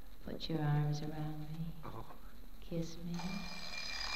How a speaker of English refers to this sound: The alarm clock broke it up just when it was getting good.